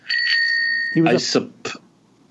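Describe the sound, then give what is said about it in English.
A bicycle bell, rung to claim the turn to answer a question, rings once with a bright, sustained metallic tone lasting about a second, followed by brief voices talking. “you chimed in with that bell, so you go ahead.”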